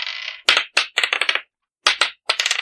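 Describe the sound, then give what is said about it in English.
A six-sided die, dropped from about a foot up without a tray, clatters onto a table with a cluster of sharp bouncing clicks, a brief pause, then another run of rapid taps as it tumbles and settles, fairly loud. “It's either each of you pick a number 1 through 6, or roll a 6-sided dice.”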